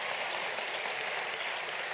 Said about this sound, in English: And I want to thank God for choir. Let's get a choir hand clap.